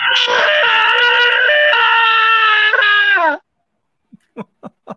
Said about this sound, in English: It's for whatever reason, they loved having me eat and scream on the show. Those were, like, …'s 2 gimmicks, so... And I can still do both.